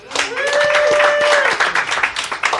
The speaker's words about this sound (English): Yeah, man. My round of applause.